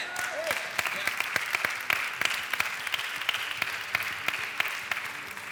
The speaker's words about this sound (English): This week, may you clap hands like never before and worship God one more time.